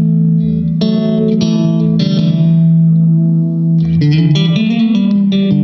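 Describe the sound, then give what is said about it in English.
A loud, sustained, distorted instrument tone runs through an effects pedal with a slapback echo. Fresh note attacks strike about every second, and a wavering, pitch-bending passage follows at the end. “It's almost like getting to slap back.”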